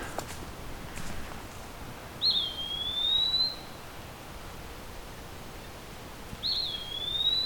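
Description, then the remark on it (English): An eastern woodpecker on a dead branch under the canopy, about 15 feet away, gives two clear, high whistled calls about four seconds apart, distinct against a quiet outdoor background with no talking. “Okay, I'm approaching pretty close up to an eastern woodpecker.”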